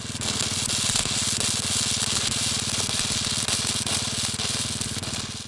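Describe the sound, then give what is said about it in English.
A steady, harsh crackle from a welding torch welding an engine's gasifier runs unbroken, a dense buzzing hiss over a rapid low rumbling pulse that holds at an even, fairly loud level throughout, with no voices. “With his visual world reduced to a spark and the sound of crackling filling his ears, tactile input was the only communication channel left.”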